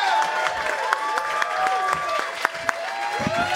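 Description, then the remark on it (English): A club audience applauds and cheers steadily as comedian Dave Juskow is introduced, with dense, continuous clapping and scattered whoops and shouts rising above it. “Make some noise for the Don himself, Dave Juskow.”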